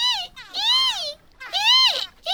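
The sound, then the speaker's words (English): A voice imitates a woman grinding her teeth in her sleep, likened to a dolphin sound, with three loud, high, squeaky squeals that rise and fall in pitch, separated by short pauses, with no other sound around them. “and she grinds her teeth in her sleep, and it sounded like this.”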